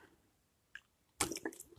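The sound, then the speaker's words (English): A quiet sip of water: a small wet click, then a brief slurping burst with a few soft wet smacks, heard alone with no talking. “Always drinking water now and different stuff.”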